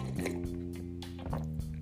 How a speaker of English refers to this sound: Let me sip my tea thing. Hold on.